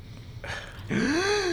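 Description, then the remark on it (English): A loud gasp: a short breathy intake of air, then a voiced, drawn-out cry that rises and falls in pitch, louder than the breath before it. No other talk. “would you have to gasp like that? So loud?”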